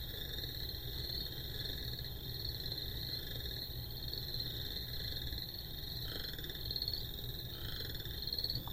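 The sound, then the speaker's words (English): A chorus of chorus frogs calls steadily with rising, raspy trills like a finger run along a comb's teeth, repeating over a constant background din of other frogs and insects, with no talking. “So I think we've got the chorus frog call.”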